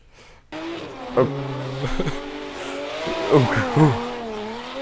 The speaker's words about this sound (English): We're just doing donuts, guys, from what I can tell. We're doing donuts, but the car is making a lot of gear changes, which I don't think is normal when you're doing